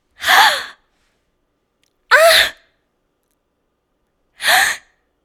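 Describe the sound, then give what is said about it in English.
Three short, breathy gasps of excited delight performed as a character voice, evenly spaced with silent pauses between them, fairly loud, each a quick voiced intake of air with no talking around them. “Give a, like, a, like some gasp. More of a gasp than, yeah, okay.”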